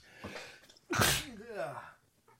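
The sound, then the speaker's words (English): A single loud sneeze bursts out after a quick inhaled breath, trailing into a short voiced sound before things go quiet. “Bless you. Thank you.”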